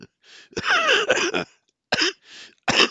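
A fit of harsh, raspy coughing brought on by laughing: one long hacking burst followed by two shorter coughs, with a few wheezy breaths between them and no speech.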